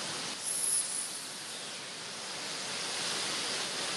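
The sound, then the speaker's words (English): Steady rushing wind fills the whole clip with a constant, airy hiss, swelling slightly near the start before settling into an even roar. No voices are heard. “Can you hear this wind?”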